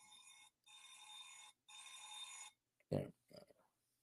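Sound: phone alarm ringing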